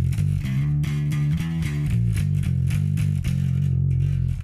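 A clean, compressed bass guitar plays a run of low, steady notes with a hint of distortion grit, the level staying even throughout with no voices.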